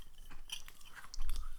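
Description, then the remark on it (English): Wet, crunchy chewing sounds of a person eating with a lot of food shoved in their mouth, a rapid series of smacking and crackling bites with a low rumble underneath and no talking. “Why do you chew like...”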